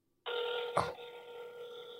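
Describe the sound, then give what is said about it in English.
An outgoing phone call rings through a handset, a steady electronic ringing tone that starts abruptly and keeps going, broken once by a short click. No one picks up and no voices are heard. “Why wouldn't you pick up the phone?”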